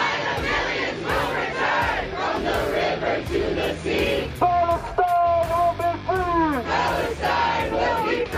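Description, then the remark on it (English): A large protest crowd at George Washington University in Washington, D.C. chants "From the river to the sea" and yells in loud, rhythmic bursts, with several sustained shouted voices rising and falling in pitch above the dense, continuous roar of many people. “That was the George Washington University in Washington, D.C. From the river to the sea, wipe Israel out, kill all the Jews.”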